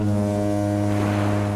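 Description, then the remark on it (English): A deep, steady steamship horn blares loudly and continuously out in the middle of the Atlantic Ocean, its low droning tone with strong harmonics sounding without a break, no voices present. “A steamship, to be exact, out in the middle of the Atlantic Ocean.”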